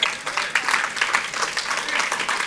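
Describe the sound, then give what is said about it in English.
An audience claps steadily, a dense, continuous patter of many hands at a fairly loud, even level for a couple of seconds, with no clear voices standing out; the applause is for 24 men and women at the front who journeyed together through several weeks of study. “Yeah, clap.”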